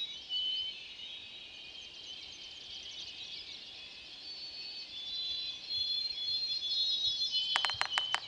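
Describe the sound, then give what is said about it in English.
A yellow-bellied sapsucker, a kind of woodpecker, drums on a tree near the end, a short burst of sharp woody taps that starts fast and then slows, following several seconds of steady high bird chatter in the background. “Whoa, did you hear that drumming? It's coming from a yellow-bellied sapsucker. It's a kind of woodpecker.”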